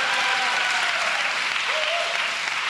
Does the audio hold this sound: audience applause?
yes